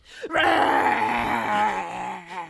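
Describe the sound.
A person gives one loud, sustained growling roar lasting about two seconds, rough and throaty, in a mock monster voice, tapering off at the end with a short catch.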